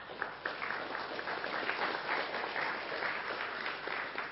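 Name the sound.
round of applause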